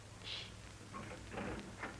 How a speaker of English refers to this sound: I'm going to open up the door and listen.